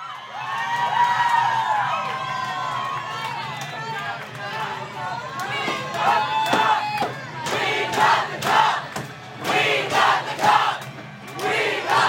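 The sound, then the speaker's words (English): A rowdy crowd of Colorado Avalanche hockey fans cheers and chants loudly inside the Tight End Bar on Colfax in Denver after the Avalanche won the Stanley Cup over the Tampa Bay Lightning, with overlapping shouts and whoops rising and falling, and sharp bursts of yelling toward the end. “Cheers morphed into chants last night as the Colorado Avalanche won the Stanley Cup.”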